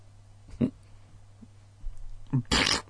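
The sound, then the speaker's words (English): A voice imitates a fart with a few short, low sputtering bursts, ending in a louder, breathy raspberry-like blast. “Fart noise?”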